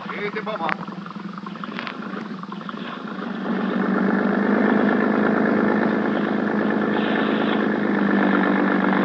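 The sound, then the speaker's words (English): A motorboat engine hums steadily throughout, growing louder and fuller partway through as it revs up and settles into a constant drone with a low rumble and mechanical chatter. “When Sergeant Malva finally arrived at the harbor police dock, a boat was ready for us.”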